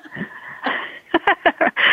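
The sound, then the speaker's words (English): A female pet dog snoring with a raspy, wheezing drone, breaking into a quick run of short, sharp snorts toward the end. No one speaks. “I'm sorry, I'm distracted by my dog snoring in the background.”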